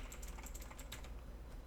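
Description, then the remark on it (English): A quick flurry of sharp keystrokes clatters on a computer keyboard, a dozen or so clicks in close succession that thin out toward the end, with no one speaking. “And I can't type anything because my keyboard is loud as hell.”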